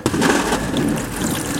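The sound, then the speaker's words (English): A steady stream of water pours without a break, a continuous splashing and trickling hiss that holds an even loudness from start to finish with no voices. “There is no separation. There is no stop. The water continues to flow.”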